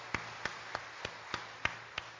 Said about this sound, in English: 15 people just responded to the gospel. Y'all, we can celebrate that. I want y'all to clap for that. That's awesome. 15 salvations. That's awesome.